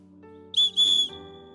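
Two sharp, loud blasts from a whistle, the second a bit longer than the first, shrill and steady in pitch, with a low background hum underneath and no voices.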